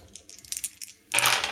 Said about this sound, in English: Oh, my dice are going everywhere. I want to be there the day you move to another apartment or something. There's going to be so many dice, dude.